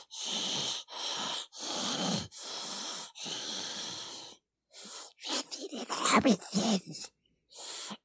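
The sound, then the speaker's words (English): A person does a raspy, wheezing breathing imitation as a warm-up for a Gollum voice impression: five or six harsh, rhythmic gasping breaths, fairly loud, followed by a choppier run of throaty rasps and a final short breath. “In order to like warm up to do it, I always do like the breathing.”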